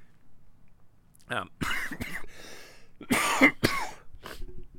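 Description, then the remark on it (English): Several harsh morning coughs come in quick bursts, a throat-clearing rasp among them, with brief pauses between each fit and no talking. “Sorry, morning cough.”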